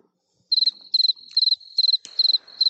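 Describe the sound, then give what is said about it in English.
A crickets sound effect: crickets chirp in a steady, evenly spaced rhythm of bright, rapid pulse bursts with a faint high trill between, plus a brief rustle near the end; no talking. “We're going to light our cigar today with the Vertigo Sputnik, just to give Ed Sullivan something else to do than play the crickets.”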